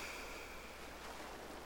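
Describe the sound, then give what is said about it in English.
A soft, steady wash of ocean surf, a continuous hiss of water with no distinct breaking wave, heard on its own with no voices. “And as you breathe in, the waves pull in. And as you breathe out, the waves roll out.”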